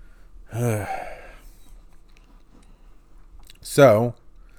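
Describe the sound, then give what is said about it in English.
A person yawns twice, each a long, breathy, voiced stretch that rises and falls in pitch, with a few seconds of quiet between them. “Another yawn.”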